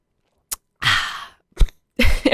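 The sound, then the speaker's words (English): A sharp click, then a long breathy fizzing slurp as someone sips a carbonated Celsius drink, another short click, and a satisfied exhale with a faint voiced sigh at the end. “Hold on, I need to have a sip of my Celsius. A little ASMR moment.”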